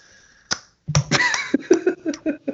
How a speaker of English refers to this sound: You clapping for yourself? Yeah, I didn't clap.